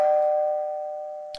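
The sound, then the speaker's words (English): A single doorbell chime strikes once, a clear bright tone that rings out and slowly fades, ending with a faint click. No one speaks. “Now, is it just me or is the doorbell even ringing?”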